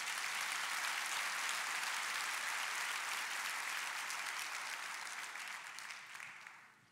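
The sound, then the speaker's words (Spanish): An audience claps together in steady, dense applause that holds strong for several seconds, then gradually thins and fades toward the end. No one speaks over it. “Dale otro aplauso al Señor duro ahí.”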